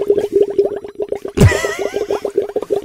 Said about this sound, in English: Somebody's blowing bubbles.